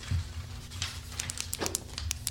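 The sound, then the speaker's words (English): A pen is clicked repeatedly, a quick uneven string of sharp, bright little clicks over a low steady hum, with no voices. “Sometimes I click my pens when I'm nervous.”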